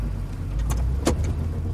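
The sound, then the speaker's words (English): Steady low road rumble of a car in motion, heard from inside, driving a route from a Kmart back toward Osborne Road, with a couple of brief hissy clicks over the constant drone and no voices. “I'm going to drive the route that Lois Stansbury told law enforcement in 1989 that she took”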